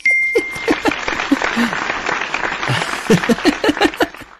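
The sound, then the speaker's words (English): Chimpanzee calls: a busy jumble of short hoots and sharp cries, some rising and falling in pitch, over a constant rustling, clattering background with a brief thin whistle at the start. “Chimpanzee was the correct answer.”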